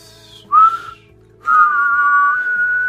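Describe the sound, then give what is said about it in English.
A person whistles two clear, steady tones: a short note, a brief pause, then a longer sustained note held for over a second with no talking. “Do a whistle, though.”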